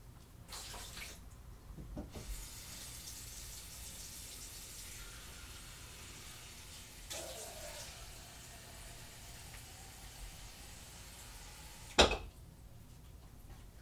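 A faucet runs steadily into a glass for several seconds, a soft continuous hiss of water, ending with a brief sharp clink near the end. No one speaks.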